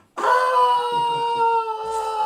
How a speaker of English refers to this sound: I'm doing my IV yell.